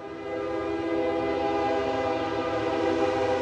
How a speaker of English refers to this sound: Other than the train passing through, the town is pretty quiet.